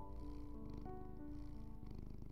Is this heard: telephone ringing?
no